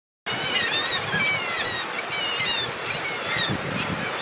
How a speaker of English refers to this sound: They also have a distinctive call in which they're supposedly saying, "Kittiwake, kittiwake." I'll play the call and let you judge for yourself.